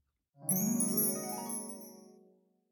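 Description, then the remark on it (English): A sleigh bell rings once, clear, its bright shimmering tone trailing off over about two seconds with no voices around it. “I'll fly away when I hear Santa's bell.”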